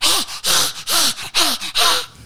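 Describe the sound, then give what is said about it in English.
A person voices about five harsh, raspy coughs in quick succession, each a loud noisy burst with a brief throaty tone, imitating the 'Strider cough' linked to laryngeal paralysis. No talking. “These hurt my throat a little. That's the Strider cough.”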